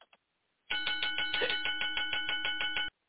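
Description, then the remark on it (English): A doorbell rings loudly, a rapid, steady run of metallic strikes lasting about two seconds, preceded by a couple of faint clicks and with no talking. “We've had that one because it's like, why are you ringing the bell after the match and somebody's attacking?”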